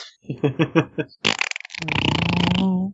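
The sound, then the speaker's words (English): A voice imitates a motorcycle engine as one character gives another a ride: a few rhythmic sputtering putts, a breathy burst, then a loud, steady, buzzing vroom held for about a second before cutting off. “Suddenly, motorcycle sounds.”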